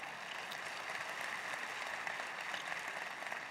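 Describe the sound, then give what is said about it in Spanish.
An audience claps steadily for the Lord, a dense, even wash of many hands with no pauses, bright and crackly like heavy rain, sustained at a constant moderate level with no voices. “Si usted lo cree, levántele un fuerte aplauso al Señor.”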